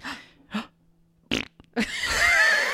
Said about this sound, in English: It was a ghost fart.